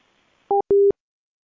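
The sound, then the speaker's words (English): Two short electronic telephone ringing tones, the first slightly briefer than the second, sound in quick succession before the call is answered. They are clear, with quiet around them and no one talking. “It was ringing and ringing, and then you answered.”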